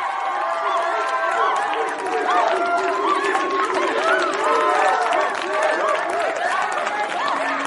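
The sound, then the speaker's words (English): A dense, excited crowd of many overlapping voices clamors and cheers nonstop at a steady, fairly loud level, with no single speaker standing out from the throng. “The crowd seems to be more excited than at a … concert where they leave the stage”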